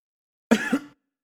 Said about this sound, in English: coughs into the microphone. So I might actually have gotten this shit. I don't know.